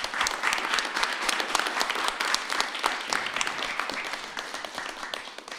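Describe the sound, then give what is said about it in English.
Sustained applause from a sizable audience, many hands clapping densely and steadily for several seconds before tapering slightly at the end, with no voices standing out. “big round of applause for the podcast Garage again”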